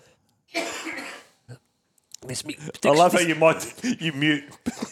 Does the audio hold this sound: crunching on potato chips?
no